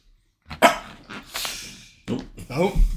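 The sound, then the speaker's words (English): A dog barks and yips several times, short sharp calls broken by brief pauses, with a couple of whiny, drawn-out vocal sounds near the end. “Doggy agrees.”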